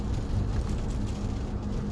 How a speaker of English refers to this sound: Now you might hear the pitter-patter on my windshield of the rain, which is kind of welcome, you know, after all that sunshine, you don't mind getting a little bit of rain.